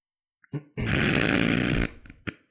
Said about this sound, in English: He's clearing his sinuses over here.